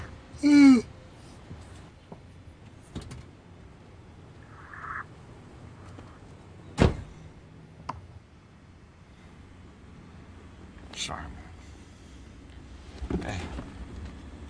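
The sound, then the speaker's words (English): A few sharp, solid thumps like car doors shutting, spaced several seconds apart over a low rumbling, windy background, with some faint murmured voices. “All right, they jump back in the car.”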